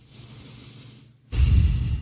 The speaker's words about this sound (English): I like the breathing.